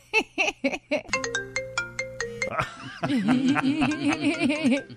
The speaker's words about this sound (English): I think that's just the regular. Is it a regular iPhone ring? Or right, I don't know. Do like other phones defaults. Have it? Yeah, it's the default. Yeah, the default. The default. It's the default ring.